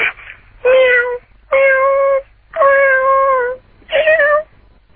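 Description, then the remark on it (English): A person imitates a distressed cat stuck in a tree with four long, plaintive meowing wails in steady succession, loud, each a drawn-out cry with short pauses between. “Okay, well, listen, you know the first challenge is going to be, can you do the sound of a cat stuck in a tree?”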